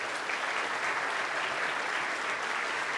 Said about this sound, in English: Let's give all our workers a hand clap.